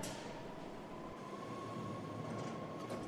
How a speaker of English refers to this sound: Here's a train now.